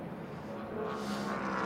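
A steady drone of race car engines on a circuit as many cars come into the pits after a relatively short run, swelling slightly louder toward the end, with no voices over the rumble.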